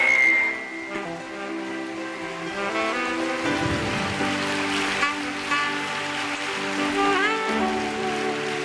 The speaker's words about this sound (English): Now I want you to clap your hands and thank God for what you have heard tonight.